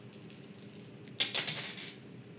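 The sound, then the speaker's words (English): Dice rattle softly, then clatter sharply across a hard surface in a quick burst of clicks that fades as they settle. The sound is fairly quiet, with no voices. “So, let's have a roll. We need some dice.”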